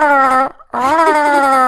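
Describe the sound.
Someone imitates dolphin calls with their voice: two loud, sustained, siren-like tonal cries separated by a brief pause, the second rising slightly in pitch. Clear, with no other sounds.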